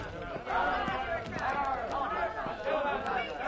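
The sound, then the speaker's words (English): A loud crowd of many overlapping voices shouts and jeers at once, a continuous angry clamor with no single voice standing out, as a mob pursues and taunts a woman. “What is that mob? Why do they taunt the woman?”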